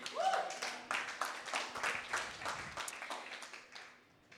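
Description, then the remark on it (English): An audience claps in a steady, dense patter of many hands for about four seconds, moderately loud and fairly even throughout, over a faint low hum. “Yeah, you can clap.”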